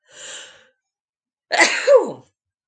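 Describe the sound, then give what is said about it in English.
A single loud sneeze from someone feeling sneezy from a cold wind: a breathy inhale lasting about half a second, a brief pause, then a sharp explosive burst that trails off with a falling tone. “I might sneeze. I'm a little sneezy.”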